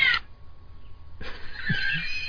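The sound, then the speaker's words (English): A pet cat gives a couple of strained, drawn-out meows, moderately loud, with a short pause between them and no talking over the sound. “That's my John's cat going.”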